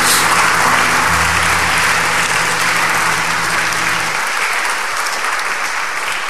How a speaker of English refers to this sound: Yes, you can clap for the Lord if you feel like clapping.